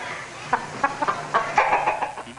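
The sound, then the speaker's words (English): A chicken clucks in a quick, irregular series of short, sharp bawks, moderately loud, with no talking over it. “The other chickens just called me chicken. Bawk, bawk, bawk, bawk.”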